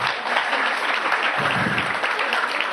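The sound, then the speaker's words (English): A crowd claps steadily and loudly, a dense wash of many hands applauding at an even level from start to finish, with no pauses. “No, I should be giving you a standing ovation and applauding you.”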